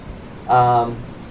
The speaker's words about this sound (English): And it's really cold. It's raining sideways, basically.